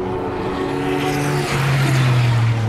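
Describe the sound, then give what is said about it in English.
A loud Aston Martin straight-six race car, number 009, roars past, its steady harmonic drone rising in pitch as it approaches and sweeps by, with no talking over it. “First of those two was the Aston, the straight 6, 009.”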